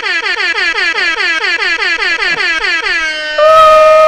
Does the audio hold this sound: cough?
no